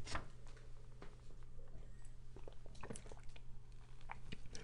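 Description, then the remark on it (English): Someone sips coffee: a few soft, wet slurping and mouth sounds scattered over several seconds, quiet against a steady low background hum, with no talking. “Hold on while I take a sip of coffee.”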